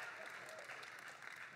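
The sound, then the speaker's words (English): An audience claps in a steady, dense patter of many hands that holds at an even level from start to finish. It sounds soft. “Let's clap for that.”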